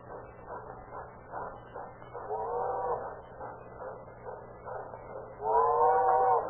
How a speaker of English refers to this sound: Here comes the train. Are they waiting for it to pass?